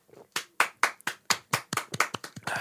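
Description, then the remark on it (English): Hands clapping, roughly a dozen sharp, crisp claps in a quick, slightly uneven rhythm that speeds up toward the end, with no talking; clapping to celebrate news of an arrest by federal authorities. “I was sipping water. I couldn't clap.”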